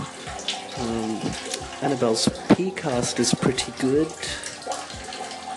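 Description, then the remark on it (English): A steady stream of urine splashes into a toilet bowl, a continuous hissing trickle running the whole time beneath a man talking. “That's the sound of my pee.”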